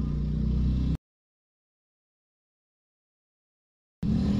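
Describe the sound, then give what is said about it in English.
A car engine running on only two cylinders rumbles loudly and roughly, heard in two short bursts with a long stretch of dead silence between them. “That motherfucker running on two cylinders.”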